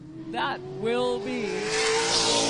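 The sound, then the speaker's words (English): The engine of race car number 14, driven by Brandon Carlson out of Saanichted, drones and climbs in pitch as it revs along the speedway ahead of a 300-lap race. It is loud and steady throughout, with a voice talking over it. “The 14 car on the speedway now.”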